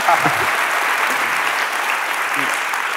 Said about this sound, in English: I'd also like to thank KAWS for being here this evening. We really appreciate it. So maybe one more round of applause for our special guest.